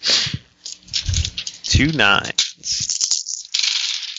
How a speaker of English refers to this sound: 2 9s. 2 8s. 3 1s. Okay. Nothing. I rolled 9 dice and got nothing.